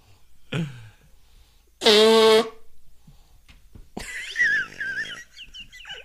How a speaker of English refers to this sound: I blow my nose at you. That was wet.